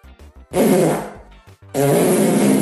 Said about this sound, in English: Who wants to watch me fart all in this cake? Okay. Oh yeah. Okay, something came out of her ass with that fart.